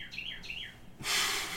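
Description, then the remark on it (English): A bird chirps twice in quick succession at night outside a window, each call a short downward-sliding whistle, fairly soft, followed by a brief burst of breathy hiss. “The bird is here. Fuck, it's nighttime. Go to bed. You're a bird.”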